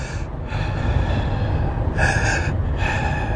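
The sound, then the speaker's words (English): A voice imitates the heavy, raspy breathing of a hunter sighting in a bear to shoot, with loud gasping breaths, the strongest around two seconds in, over a steady low rumble. “and he's talking about a guy that, you know, sighting in this bear to shoot, and then he's got, you know, the breathing.”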